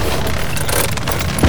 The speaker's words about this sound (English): Carl, can you stop the car?